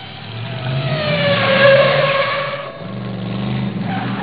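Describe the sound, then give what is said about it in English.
A voice imitates the engine of a real DeLorean car as it typically sounds in 2020, a steady droning rev that swells and rises in pitch, dips briefly, then carries on for a few seconds. “The noise of the engine of a real DeLorean today in 2020 is typically sounds something like this.”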